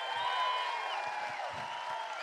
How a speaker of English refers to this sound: How many of y'all believe that Jesus is King of Kings and Lord of Lords? Come on, come on, let's really give him a hand clap. Amen.